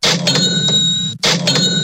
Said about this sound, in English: Double cash register means that it is time for Florida Cash Homebuyers cashing in.